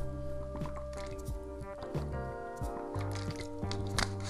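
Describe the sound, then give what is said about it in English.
Wet sounds of someone drinking water during a water break, a few gulps and swallows with faint liquid sloshing over several seconds, against a steady low background hum. “All right, for the water break, people.”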